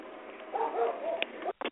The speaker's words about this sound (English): Yes, I just muted you real quick so you didn't hear the dog barking.